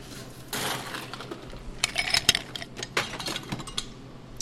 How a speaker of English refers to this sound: So the first thing we're going to do is just get a glass, an old-fashioned glass, that's what they're called. We're going to fill it with some ice.